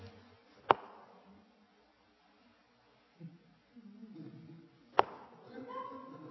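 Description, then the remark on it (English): Two sharp, isolated keystrokes on a keyboard several seconds apart, a very slow hunt-and-peck typing rhythm, with a faint low murmur in the background between them. “Here's my way of typing.”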